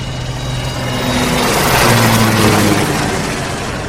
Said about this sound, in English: The helicopter you can hear in the background is moving closer and closer to the boat until it'll be hovering directly overhead.